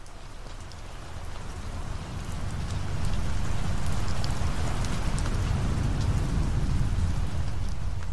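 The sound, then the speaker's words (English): Steady heavy rain from a major storm front over the US East Coast on the evening of Monday, September 10, 2001 pours down, a dense hiss with scattered drop spatters, swelling louder after a few seconds while a low rumble of thunder rolls underneath. No voices. “A major storm front swept across the East Coast on the evening of Monday, September 10th, 2001.”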